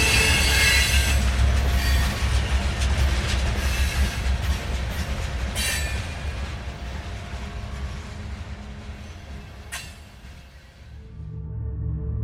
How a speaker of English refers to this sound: Then she vanished, leaving Jonathan as the train rushed in.